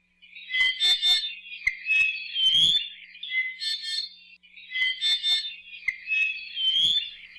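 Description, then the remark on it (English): An iiwi, a nectar-feeding Hawaiian bird with a long curved bill, in a high-elevation ohia forest, sings a creaky, squeaky song like a rusty gate hinge, in two similar phrases of grating, whistled notes with brief clicks, fairly loud with no talking. “The iwi sing a huge repertoire of songs, the most famous of which sounds a bit like a squeaky gate.”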